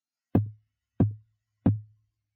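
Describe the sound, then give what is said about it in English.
Three evenly spaced knocks on a white painted wooden hotel room door on the second floor at midnight, each a sharp thud with a short resonant tail, clear with silence between them. “At midnight, Doris is woken by the sound of knocking on her door.”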